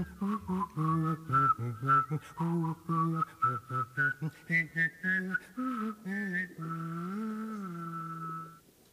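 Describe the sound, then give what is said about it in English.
A person whistles a quick run of short, choppy notes in a bouncing rhythm, then holds one long wavering tone to finish. Fairly loud, with no talking. “It broadcasts over 12 nights a comparative study of whistles, including whistles that your high school track coach favored when he was in a bad mood, and that guy up the street who can whistle like nobody's business.”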